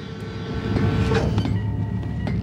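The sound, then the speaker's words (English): A DS9 (Deep Space Nine) space station door sound from a sound bank, used as the Admiral's Club door, slides open: a steady low mechanical rumble swells into a hissing whoosh, with a few sharp clunks partway through and a faint high whine toward the end. No voices. “So these are DS9 doors we're listening That's to.”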